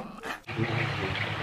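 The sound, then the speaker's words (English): A single short, sharp bark from Lily the dog, then a steady wash of bubbling, churning hot tub water. “With special guest star, Lily the Barking Bean.”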